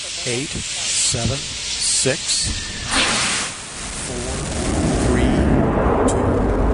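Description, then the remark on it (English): A voice talks over a background hiss, then a broad, rushing roar swells up and holds steady, loud and low-heavy, like a rocket's main engine igniting and building to full thrust. “Go for main engine start.”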